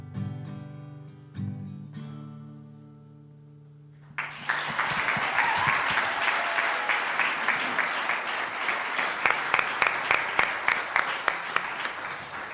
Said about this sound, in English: Fantastic. Thank you so much to all the performers so far. Let's give another round of round of applause for them.